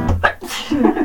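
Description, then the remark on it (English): A single sneeze, apparently acted out by a voice: a couple of quick gasping breaths build up, then a sharp, breathy burst and a short trailing vocal tail. “I have to sneeze.”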